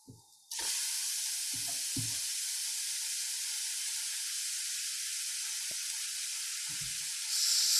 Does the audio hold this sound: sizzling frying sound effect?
yes